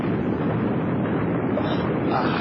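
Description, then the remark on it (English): A volcano erupting at its side, with lava flaming and bubbling: a loud, continuous, deep roaring rumble with a churning, crackling texture, steady throughout with no pauses and no voices. “You see the way the lava is flaming and bubbling?”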